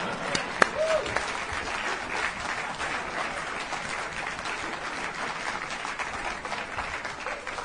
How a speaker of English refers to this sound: This gentleman, forever my friend, left town when Donald J. Trump came. And a big round of applause for that.